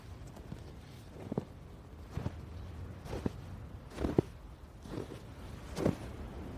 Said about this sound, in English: Okay, snowshoes on, and away we crunch.